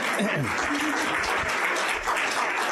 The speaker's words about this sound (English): Yes, you can start clapping.